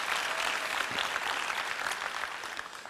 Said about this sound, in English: Thank you very much. Let's give God a great round of applause also. He's worthy of all our praise.